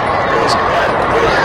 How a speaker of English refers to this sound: Now, those are the BA parents cheering.